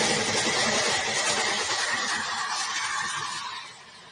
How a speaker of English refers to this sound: This is a video here of a car that did just that. They said, you know what? Let's go ahead and just drive off and see what happens. Coming out the parking lot. Checking traffic.